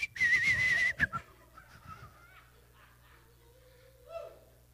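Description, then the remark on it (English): A woman whistles cheerfully as she gets up in the morning: a loud, bright whistled note wavers for about a second, then a few softer, scattered whistled tones follow quietly, with faint background noise beneath. “And she's whistling song and dance.”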